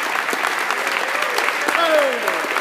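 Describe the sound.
An audience at the ATO Congress National Convention in Orlando, Florida applauds with dense, steady clapping that holds at an even level throughout, while a few voices call out and cheer over the crowd.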